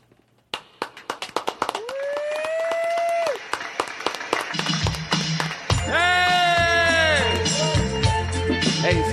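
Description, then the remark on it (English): Loud applause, made on request to sound real and cover the start of a recording, builds from scattered sharp claps into a dense, steady roar of clapping, while sustained musical tones and a thumping bass line come in over it partway through. “If you don't mind, applaud loud, because that way we can cover, like we can come in and it gets lost.”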